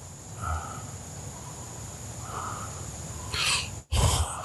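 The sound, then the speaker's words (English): A dog breathes steadily with a soft, rough rasp, then lets out two louder, breathy snorts in quick succession toward the end. No one speaks. “You just listen to him breathe.”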